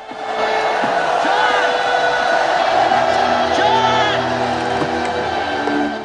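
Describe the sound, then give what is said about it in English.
In a Rambo film scene, a large waving crowd by a jetty shouts and cheers continuously as Troutman and Griggs push through, a dense wall of overlapping voices with occasional whoops rising above, loud throughout. “The waving crowd hinder Troutman and Griggs' progress.”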